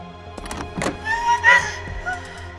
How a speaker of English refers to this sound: And Eliza opens the door.